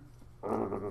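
A dog growls low, starting abruptly after a brief quiet moment and holding steady for under a second, with no talking.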